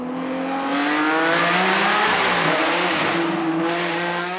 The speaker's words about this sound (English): By all accounts, Ferruccio Lamborghini's first model is a whopping success, and he begins to sell customer versions with a screaming Bezzarini V12 motor named after his head engineer.